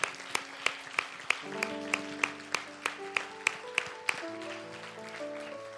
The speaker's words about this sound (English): And then real quickly, if we could we just give a hand clap to our amazing pastor and our amazing leadership at this church. I mean, none of this is possible without them.